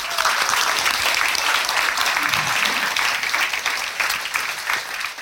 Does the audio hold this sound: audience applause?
yes